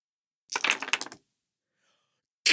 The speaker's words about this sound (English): God damn it. I had 7 dice. 7. And I didn't roll a 6.